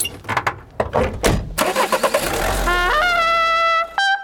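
A car engine cranks over a few times, catches, and then revs upward with a rising whine, loud, before settling briefly and revving again.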